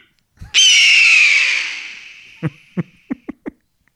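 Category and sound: bird, eagle screech sound effect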